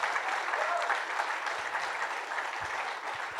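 A crowd claps steadily for several seconds, a dense wash of many hands applauding at an even, sustained level with no voices standing out.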